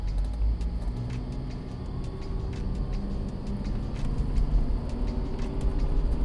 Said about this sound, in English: He started up his car and got back on the road as soon as he could.